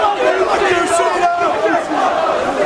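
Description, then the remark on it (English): A large ECW wrestling crowd yells and roars continuously as WWE Champion John Cena goes out among them to face Rob Van Dam, loud, dense, overlapping shouting voices, an agitated and hostile-sounding wall of noise with no pauses. “John Cena going out among the ECW crowd.”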